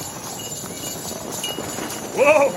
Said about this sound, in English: Wait a minute. Do you hear that? Yeah. Those sleigh bells. Of course. You hear them? I do.